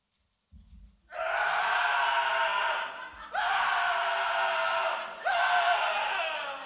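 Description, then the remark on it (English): Three long, loud screams follow one another almost without pause, each held for a second or two, raw and strained, with a brief low thud before the first. “Screaming.”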